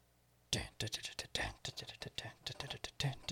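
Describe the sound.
Crackly bursts of crumpling paper come in a quick rhythmic pattern, the Doctor Who theme song being played on the sheet, with no talking over it.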